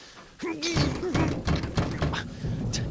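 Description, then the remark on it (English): Someone struggles to force open a stuck, padlocked warehouse door: a strained grunt of effort, then a run of dull thunks and knocks as the door jolts against its frame. “Bugger, it's stuck fast.”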